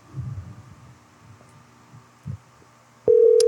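Quiet low rumbling and murmuring, then a loud, steady electronic phone-line tone abruptly begins near the end and holds, like an unanswered call ringing through.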